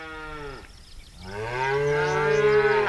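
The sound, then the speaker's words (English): Cattle on a range in the West moo loudly, a drawn-out bellow that dips into a brief pause and then swells into a second, longer call, with no talking. “Cattle have grazed the ranges of the West for over 150 years.”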